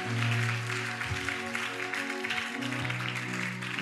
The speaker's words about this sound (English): Put your hands together for them. Are you clapping?